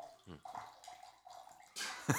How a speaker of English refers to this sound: Why are you peeing in the studio? It looked like you just poured water all over your lap.